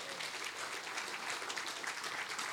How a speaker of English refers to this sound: Will you give the Lord another hand clap of praise this morning?